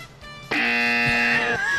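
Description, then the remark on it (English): A loud, harsh electronic game show buzzer blares once for about a second during a quiz on NFL quarterbacks' passing yards, a steady droning tone that cuts in abruptly after a brief lower hum and then trails off. “I can just keep my finger on the buzzer all night.”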